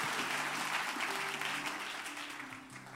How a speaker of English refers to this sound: Give the Lord a hand clap of praise as you're being seated today.